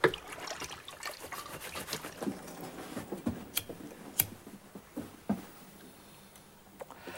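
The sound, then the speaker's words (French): Dishes being washed under running water: a soft, steady trickle with scattered sharp clinks and clatters of plates and cutlery, a few louder knocks standing out, no voices. “Explique-moi pourquoi t'aimes faire la vaisselle.”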